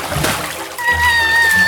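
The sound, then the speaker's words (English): A quick, loud splash as a bucket of water is thrown on the Wicked Witch in a scene set in the land of Oz, a brief wet burst near the start, followed by a thin, sustained high-pitched tone. “Look what you've done. You've covered me in water.”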